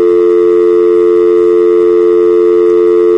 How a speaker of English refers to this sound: That's a dial tone for those of you who've never used anything other than a cell phone. That's how we know when the phone's ready to dial.